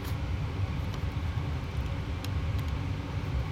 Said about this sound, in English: a black Ford pickup truck pulls up to the house, and out jumps Zach